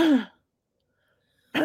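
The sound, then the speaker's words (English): Two short coughs separated by more than a second of silence, the first throaty and voiced, trailing off, the second a brief, harsh burst. “cough, cough. Cough, cough.”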